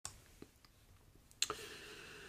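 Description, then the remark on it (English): A few sharp mouse clicks as someone starts a video, the loudest pair coming in quick succession near the end, after which a faint steady background tone begins. “Okay, here we go. I'm clicking. Clicking now.”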